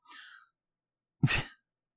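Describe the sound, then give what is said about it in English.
A single sneeze: a short breathy intake, a brief pause, then a sudden loud explosive burst that trails off quickly. No one speaks. “Bless you.”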